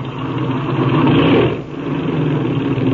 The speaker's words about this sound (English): Now then, we'll run this engine up and see how she's hitting.